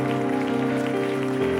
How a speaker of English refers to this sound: Why don't everybody in the house clap your hands to Jesus?